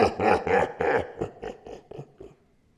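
A big black dog gives a deep, hellish howl with a growling quality, bursting out in loud rhythmic pulses that turn into a demonic laugh, then breaks into quicker, fainter cackles that trail away into silence.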